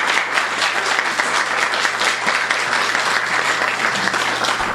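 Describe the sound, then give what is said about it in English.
An audience at a Skylight Books reading claps steadily to welcome the author, a dense and sustained round of applause that stays loud and even from start to finish, with no voices standing out. “So let's give her a very warm round of applause.”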